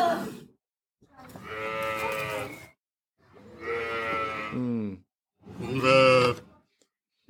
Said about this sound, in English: Well, that last one sounded like a sheep. I'm not sure they all did. Yeah. That was sheep. It does sound like a calf at the beginning there, doesn't it?